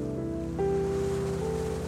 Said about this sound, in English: You find a place to sit near the shoreline so you can watch the endless waves approaching the shore.